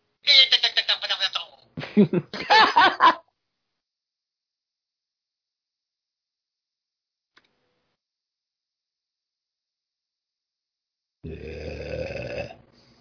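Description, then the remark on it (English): Loud, raspy fart noises: two sputtering blasts close together, a long silence, then a third lower, buzzing one near the end. “Did you get a fart?”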